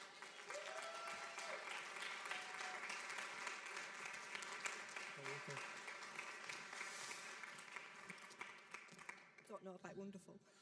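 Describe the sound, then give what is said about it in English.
A church audience at Life Church applauds steadily for about ten seconds to welcome a speaker to the stage, dense clapping filling the room at a strong, even level, with a few cheers mixed in before it starts to thin out near the end. “So why don't you give a huge round of applause for the wonderful Polly.”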